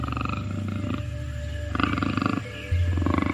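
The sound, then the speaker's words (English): A panther, a big shiny black cat, roars with a deep, rumbling growl that runs unbroken, swelling into louder, harsher bursts partway through and again near the end. No one speaks. “A panther is a big, beautiful, shiny black cat.”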